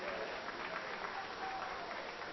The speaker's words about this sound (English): Now, the thing about it was about a third of us that clapped.